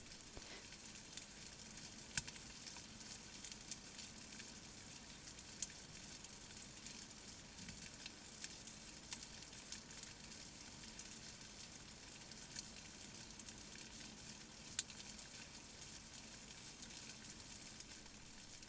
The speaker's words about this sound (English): I fed my silkworms several times a day, and for the first week or so they munched and you could faintly hear the sound, a little bit like light rain.